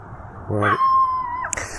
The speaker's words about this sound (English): She has the cutest little bark. I mean, she's like 3.5-4 pounds. She's and, 4 pounds, right? Yeah, she's pretty sure she can take on the UPS truck man.